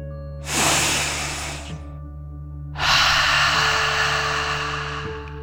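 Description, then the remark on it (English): One deep, loud relaxation breath: a slow inhale through the nose filling the lungs, a brief pause, then a long, airy exhale through the mouth over a faint steady hum. “Breathe in through your nose, filling up your lungs, and then out through your mouth, imagining you are breathing fire like a dragon.”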